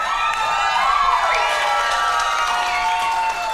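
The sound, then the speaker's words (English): An audience cheers steadily at news of an impeachment inquiry into the US president, with overlapping high-pitched shouts and whoops rising and falling over a dense, loud wash of voices. “And I hate that we're, like, cheering for that because it's a very, like, somber and shitty fucking thing.”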